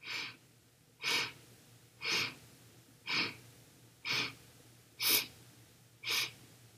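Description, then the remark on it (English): A steady series of seven short, breathy inhalations during a guided breathing exercise, evenly spaced about a second apart, each a soft airy rush with quiet pauses between and no talking. “And again, breathing in the light of our spine.”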